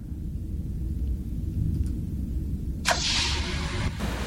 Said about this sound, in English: And from what I hear, this door is going to be 6% smoother. Here we go.